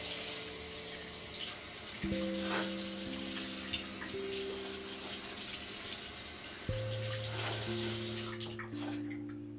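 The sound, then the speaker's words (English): A bathroom sink faucet runs steadily after teeth brushing, a broad continuous hiss of flowing water with a low tonal hum underneath and small splashes and clinks, loud throughout, with no talking. “Alright, now that I've finished brushing, I'm gonna put my phone farther away from the faucet so you guys don't hear it as loud.”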